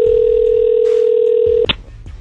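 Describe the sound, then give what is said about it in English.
A phone line's steady dial tone hums loudly for over a second and a half, then cuts off with a sharp click and brief beep as the Y107 Morning Show places a call to a listener, leaving faint line noise. “Let's get her on the phone.”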